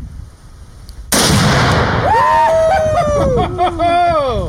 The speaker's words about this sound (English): oxidizer and some aluminum powder, and when you hit it with a high-velocity bullet, it explodes with a loud boom and a large cloud of smoke. Legally, it can only be sold in one-pound increments, and even this small amount makes a nice big explosion.